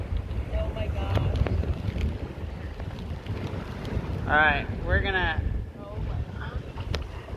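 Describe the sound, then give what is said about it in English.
A boat's engine rumbles steadily as it rides through rough ocean swells 5 or 6 feet high off the Nepali coast, with heavy wind buffeting the microphone throughout. A person speaks briefly and lets out an excited shout midway. “The waves are big.”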